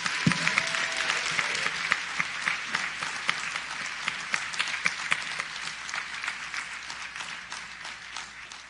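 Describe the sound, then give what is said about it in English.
An audience applauds scholarship recipients and graduates of St. Paul Baptist Church steadily, a dense wash of many hands clapping at once with sharper individual claps popping out, holding a fairly even loudness throughout without any talking. “Can we please have one more round of applause for all of our scholarship recipients, as well as all of our graduates of St.”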